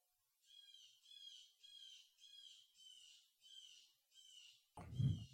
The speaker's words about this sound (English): What the fuck's wrong with that bird out there?